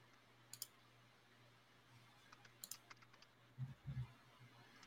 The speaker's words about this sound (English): Hey, I hear you typing.